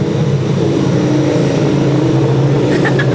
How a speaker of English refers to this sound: Sorry, that was my lesbian butch partner coming to pick me up in her motorbike.